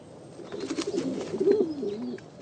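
Soft, throaty pigeon cooing rolls along in low, warbling phrases, steady for a couple of seconds, with faint rustling in the background and no voices.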